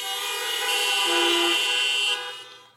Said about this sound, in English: And if you have been blessed by knowing the truth of His grace and goodness, honk your horn.